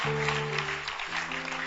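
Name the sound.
audience clapping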